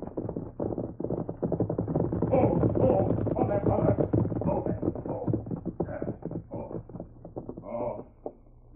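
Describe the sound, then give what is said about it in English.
A galloping horse carrying a hurt rider comes along the trail from the west, its hoofbeats pounding in a rapid, steady rhythm, loud and continuous for the whole stretch, with a low rumbling hum underneath and no one speaking. “You hear horse. Run plenty fast.”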